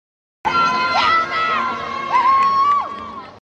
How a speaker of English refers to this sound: when he came out, we were going to scream and yell so that Calvin knew where we were sitting. And because we had our cameras ready to go capture that moment that he came in, we got this little snippet of video.